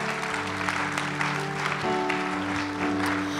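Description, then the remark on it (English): An audience claps steadily together in a hand clap of praise to Jesus during a morning service, a dense, sustained wash of applause with sustained instrumental tones, like keyboard or organ chords, sounding underneath. “Can we give Jesus a great hand clap of praise in this place this morning?”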